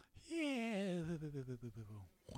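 A single loud, drawn-out snore, close up and alone: a voiced, warbling tone sliding downward in pitch, breaking into a fluttering rattle near the end, then a short breath.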